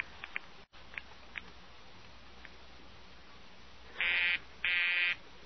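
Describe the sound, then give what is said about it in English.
A telephone busy signal on a call to radio station KRNX: two loud, steady buzzing tones pulse on and off near the end, following a stretch of faint line hiss with a few scattered soft clicks. “The line's busy, sir.”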